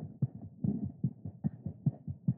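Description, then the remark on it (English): A rapid, steady fetal heartbeat from an ultrasound monitor during a doctor's scan, a fast whooshing double pulse repeating about twice a second over a low muffled hum, clear with no voices. “But then before telling me all that, he had to do the scan And I'll never forget hearing that baby's heartbeat.”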